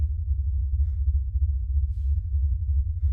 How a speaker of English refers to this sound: I scanned the dark area for any sign, listening close. For a moment, I thought I could hear breathing in the shadows.